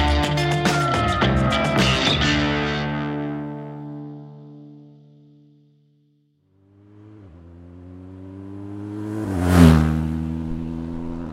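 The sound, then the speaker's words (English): A motorcycle engine revs hard, winds down and fades to near silence, then climbs again to a loud, snarling peak before easing off. No voices. “Instead of four paws, I'm on two wheels. I'm on a mission, a motorcycle quest to try and retrace the path of Germany's wolves, following them westward from Poland into the former East Germany.”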